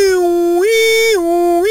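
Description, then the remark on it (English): Someone imitates an ambulance siren with their voice, a loud, steady wail that alternates between a lower and a higher pitch in a hi-lo pattern, with no other sounds. “Ambulance.”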